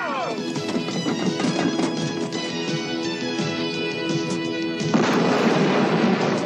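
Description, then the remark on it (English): Loud, continuous explosive booms and rumbling from breaking-down engines fill a dense, chaotic wash of sound, with a bigger noisy blast erupting near the end. “Explosions? The engines are breaking down.”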